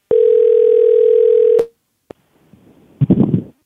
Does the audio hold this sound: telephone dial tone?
yes